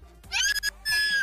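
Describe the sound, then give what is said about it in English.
Someone lets out two loud, high-pitched yells in quick succession at a voice-reactive spinning toy, strained and shrill, with a brief gap between them and no other sound around. “Now yell at it.”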